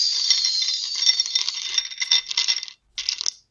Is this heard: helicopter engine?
no